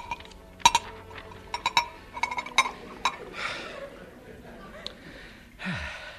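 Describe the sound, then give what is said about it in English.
A quick series of bright glass clinks and taps, irregular over a couple of seconds, as a glass of cream soda is served as a drink, followed by soft breathy gasps and a sigh-like exhale. “Oh, it's marvellous what a glass of cream soda can do for one.”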